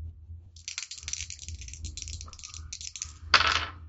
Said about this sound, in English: Holy shit, 14. 14. I maxed out both dice. Wow, I got an 8. Nice. Decently. Yeah. On a d4 and a d6.